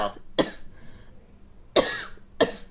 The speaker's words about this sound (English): Are you alive? I'm fine. You've been coughing a lot. Are you, yeah, you want me to bring you below? You want some water?